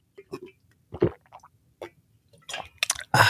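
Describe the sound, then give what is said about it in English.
A person takes a few sips of water: a quiet series of wet slurping and squishy mouth sounds, short sips and swallows spread across a few seconds with small pauses between them. “And let me get this sip of water because I'm a little parched today.”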